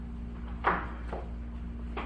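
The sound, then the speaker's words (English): A door swings shut with a dull knock, followed by a couple of softer bumps, over a steady low hum. “Guys, let me shut this door real quick.”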